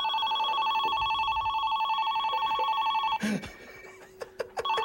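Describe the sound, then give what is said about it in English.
A telephone rings loudly and steadily with a warbling electronic trill, cuts off abruptly with a clunk, then gives a few brief ring bursts near the end. “Go answer the phone.”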